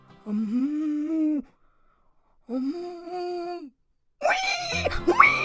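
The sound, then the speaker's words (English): A voice imitates a cow's moo with two drawn-out, low, steady moos separated by a pause, then a rougher, higher-pitched attempt whose pitch wavers and rises at the end. “Try making a cow sound.”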